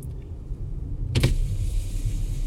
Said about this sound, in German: Das Fenster geht runter.